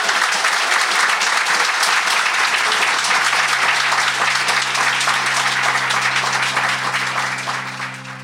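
A crowd applauds in a steady, dense wash of clapping that holds strong for several seconds, with a low sustained tone underneath, then begins to fade toward the end.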